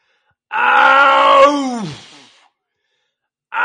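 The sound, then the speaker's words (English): A real lion lets out a single loud roar, a deep, rough, drawn-out groan pushed out with force, that sweeps downward and trails off into a guttural grunt. No voices accompany it. “So, okay, that is an actual lion. They don't just roar. They do this like guttural, they push the sound out.”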